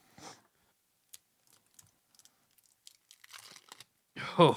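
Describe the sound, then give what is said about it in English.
Sharp, irregular crinkles and small crackling snaps of the plastic package of Lucas Bombasso lemon-flavored hot candy with chewing gum being opened, with a brief voice before and a louder voice cutting in at the end. “So it's a small plastic container”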